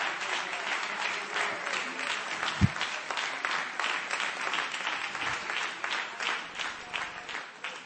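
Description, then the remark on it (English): A standing crowd claps in praise to God, steadily and continuously, many hands blending into a dense, bright wash of applause with a faint rhythmic pulse, plus a single low thump partway through. “Come on, stand to your feet, clap your hands, and give Him praise right now.”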